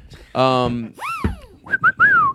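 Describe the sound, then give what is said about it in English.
A slide whistle swoops up and down in a few quick glides, ending in short bursts and a long falling slide, after a brief buzzy vocal-like tone at the start. “Great slide whistle plays on them.”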